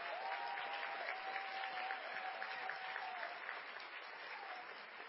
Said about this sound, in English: can we just give a round of applause for Colleen